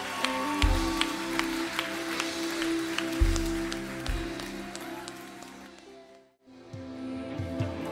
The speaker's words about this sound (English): Would you clap? Clap and congratulate.